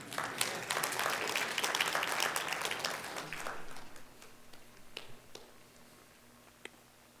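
A burst of audience applause, dense and steady for about four seconds, then thinning out into scattered individual claps before fading away.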